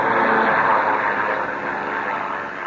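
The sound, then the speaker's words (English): A steady, loud airplane engine drone hums continuously overhead as the plane circles, a broad whirring roar that eases slightly toward the end. No voices are heard. “He's right overhead. I can see his exhaust pipes. He sure is. He's circling right over us.”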